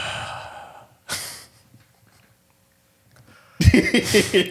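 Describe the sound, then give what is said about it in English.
A person imitates the heavy breathing of an exhausted dog: one breathy huff, a quiet pause, then a burst of loud, ragged panting. “That boy gonna be breathing heavy like Ultimate Warrior last day. They gonna be like this on the ground.”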